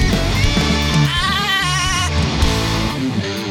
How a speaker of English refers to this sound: Somebody strangle that fucking goat.